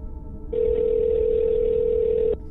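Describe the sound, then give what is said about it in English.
A telephone dial tone as a cut-off call is tried again: one steady, unbroken mid-pitched hum that starts abruptly, holds at an even loudness for nearly two seconds, then cuts off, over a faint low background rumble with no voices. “I'm trying him again.”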